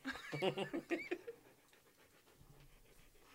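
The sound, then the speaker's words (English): A dog pants rapidly and loudly near the microphone, a burst of quick breathy huffs over the first second and a half before fading into quiet. “Are you handing your microphone to your dog?”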